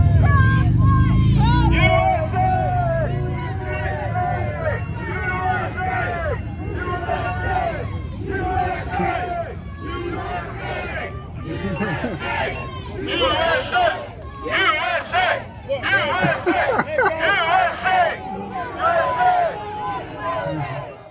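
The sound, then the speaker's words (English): A large crowd of protesters outside Joe Biden's town hall, many voices shouting and calling over one another in a dense, continuous hubbub, with louder bursts of yelling toward the end. “Here's a little clip of the large crowd outside.”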